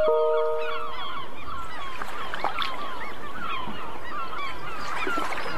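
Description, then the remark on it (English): A large flock of seagulls calls nonstop, their harsh cries overlapping in a dense, loud chorus, with no talking underneath. “Seagulls.”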